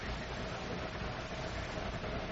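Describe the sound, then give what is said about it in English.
A car pulls up at a mailbox, its engine a steady low rumble blended with broad, even hiss that holds at a constant level throughout, with no voices over it. “It's a car.”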